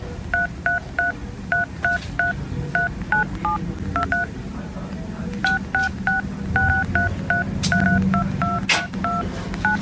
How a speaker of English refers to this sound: This is me doing Jingle Bells. I promise it's me. Right, here we go. On my phone keypad.